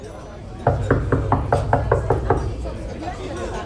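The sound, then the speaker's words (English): A quick, steady run of about nine solid knocks on a door at a holiday party, evenly spaced, lasting under two seconds before stopping. “Hey Steve, can you get the door? You're closest.”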